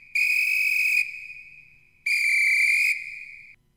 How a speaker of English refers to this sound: we would sound a referee whistle, so like a timeout is how we would do it. So we'd be like, here, we'll take a timeout, and then we'd play our whistle like right about here.